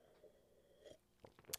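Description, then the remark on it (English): A quiet sip from a cup of coffee, with a few soft slurping and wet mouth clicks over about a second and a half, and no talking. “And I can taste and see the Lord is good just by having a sip.”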